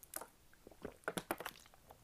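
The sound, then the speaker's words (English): Someone takes a drink of water: a quiet run of wet, irregular clicks and gulping swallows over about two seconds, with no talking. “Let me also take a drink of water.”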